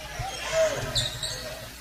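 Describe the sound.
A basketball is dribbled on a court in the final 40 seconds of a game at South Ripley, its low bouncing thumps repeating steadily over crowd murmur, with a couple of high sneaker squeaks and a voice talking underneath.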